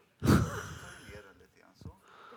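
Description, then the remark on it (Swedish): A sharp, loud intake of breath, followed by softer, lingering breathy sounds and a brief second puff of air. “Ja, jag ska försöka att inte andas.”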